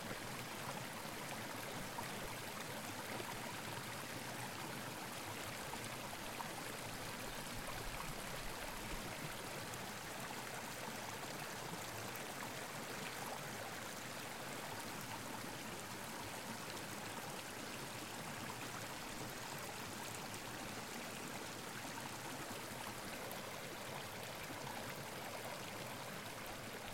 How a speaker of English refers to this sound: And that day we did do a short walk, and we found a creek, and we enjoyed the sound of the creek and just drinking tea.